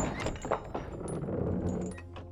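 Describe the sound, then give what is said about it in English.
Heavy temple doors are shoved open by a weak, exhausted man, with a few dull thunks and a low, grinding scrape, moderately loud, lasting about two seconds with no voices. “Weak from exhaustion, infection, and atrophy, Geppetto was barely able to push open the doors”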